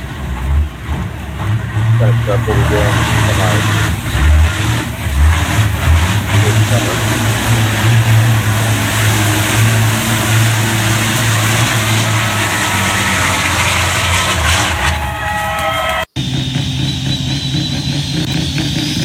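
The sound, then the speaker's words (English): Loud, heavy semi truck engines of trucks competing in a semi class rumble and rev continuously with deep droning power and rising whines, a crowd-like wash of noise underneath, ending in a brief cut to more engine roar. “Those are trucks that will actually be competing with us this summer in that semi-class.”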